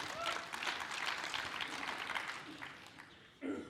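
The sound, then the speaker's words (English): A crowd at a church service claps steadily for a few seconds, a dense crackle of many hands that gradually thins out before a brief voice cuts in at the end. “I'm trusting everyone who clapped will be here tonight.”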